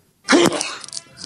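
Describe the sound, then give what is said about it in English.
A man lets out a single loud, forceful sneeze, a sudden voiced blast that breaks into a harsh, hissy burst before trailing off into quieter breathy noise. No talking. “That's a man sneeze for you right there.”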